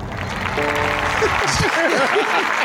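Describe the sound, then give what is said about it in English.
A steady wash of applause fills the moment, with a few voices breaking through over the clapping. “Not even an applause line.”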